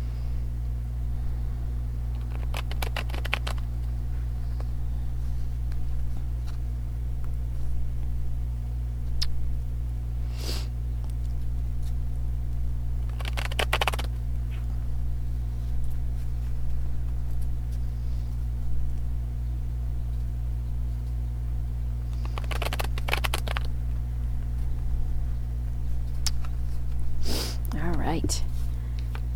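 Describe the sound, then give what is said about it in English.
Tarot cards being shuffled in several short, crisp riffling bursts spaced out over about half a minute, with a steady low electrical hum running underneath throughout. “All right, so here I go with the shuffling.”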